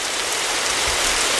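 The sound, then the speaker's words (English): Steady rain falls on a player's island in a Nintendo Switch game, a continuous, even hiss of droplets hitting a surface, moderately loud, with no voices or other sounds. “And it's like, you know, actually, on my island, and this is not a joke, actually, it was raining.”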